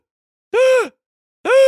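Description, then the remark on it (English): A voice imitates their own gasping, blubbering sobs from crying at the end of a film: two loud, wavering moan-like bursts with a brief silence between them and no words. “I sounded like a fish gasping for air, honestly. Like, I was blubbering.”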